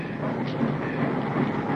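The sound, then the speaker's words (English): A train rolls along the rails with a steady rumble and a faint rhythmic clatter, continuous and fairly loud throughout, with no voices. “I was afraid you missed the train.”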